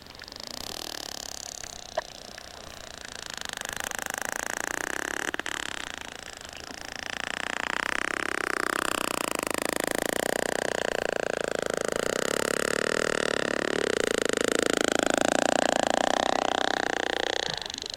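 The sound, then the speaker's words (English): Whale codas and creaks recorded about five years ago during an encounter: a dense, rapid buzzing creak that runs almost unbroken for the whole stretch, with a couple of sharper isolated clicks early on and no voices. “Let's listen to these codas and creaks that you recorded about 5 years ago.”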